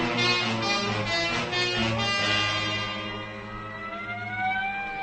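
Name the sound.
ambulance siren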